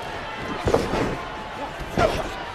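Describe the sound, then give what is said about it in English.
Two heavy metallic impacts land about a second apart as a steel chair slams into a wrestler's face during a professional wrestling match, over a steady bed of arena noise and indistinct voices. “The WWF champion Stone Cold got that chair shot right to his face.”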